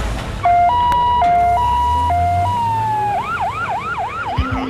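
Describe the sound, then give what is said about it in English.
A loud ambulance siren, arriving to take an injured woman from a vehicle to hospital, alternates between two tones, then switches to a rapid rising-and-falling wail, with a low vehicle engine rumbling underneath. “stop the bleeding and try to preserve as much as we could so we could package her up so that when the ambulance got here that we could get her on their way to the hospital.”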